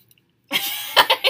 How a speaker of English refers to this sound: We have a audience member. In case you hear the coughing. Don't worry about it.